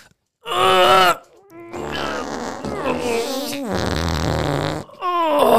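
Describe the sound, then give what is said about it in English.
A voice imitates someone straining and farting while taking a very violent shit: a loud strained grunt, then long, buzzy, sputtering raspberry-like fart noises with wavering pitch, running almost continuously for several seconds. “But taking a very violent shit is not illegal. So you just hear me just going...”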